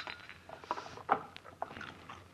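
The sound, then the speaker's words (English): Soft, crisp crunching of aspirin tablets being chewed, a handful of irregular gritty bites over a couple of seconds with no talking. “How can you chew those things like that?”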